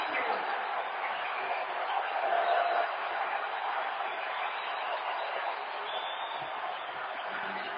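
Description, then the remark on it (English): A basketball arena crowd at a Utah Jazz game against the Thunder, on its feet after a Rudy Gobert slam dunk, cheers in one loud, sustained roar that holds steady throughout, a dense wash of many voices with no single speaker standing out. “Oh, listen to the crowd.”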